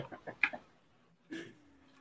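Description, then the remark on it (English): A goose honks in a quick run of short, nasal calls, then lets out one longer honk after a brief pause; fairly faint, with no talking. “The goose is loose.”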